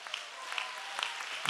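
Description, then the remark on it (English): An audience claps together during a sermon in a steady, dense patter, fairly soft, with a few sharper claps and faint voices mixed into the wash of applause. “Somebody clap. Somebody shout.”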